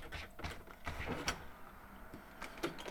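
A door being opened, with a few sharp latch clicks and rattles spread over a few seconds amid a low mechanical rumble and shuffling.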